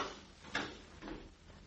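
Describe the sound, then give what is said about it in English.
A cat named Gregory at the back door: faint scratching and bumping against the door in two short bursts, muffled, with no one talking. “After all, he's only a cat.”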